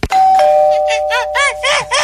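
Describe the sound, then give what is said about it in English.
A house doorbell rings with two quick chime strikes whose tones linger, followed by a run of short, bright, warbling notes that keep the sound going to the end. “The only way to get me to answer my door for sure is if I hear this.”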